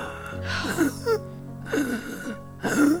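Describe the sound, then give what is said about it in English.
A voice imitates ragged, gasping breaths: three strained, wheezy inhalations with short pauses between, moderately loud, with no words spoken. “He starts breathing.”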